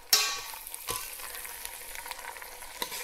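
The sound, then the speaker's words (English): Pasta drops into a hot pan of oil and warmed pesto with a sudden loud burst of sizzling that settles into a steady, crackling hiss, broken by a couple of brief stirring scrapes. No one speaks. “Maybe a bit more oil actually. And I'm gonna add my pasta in.”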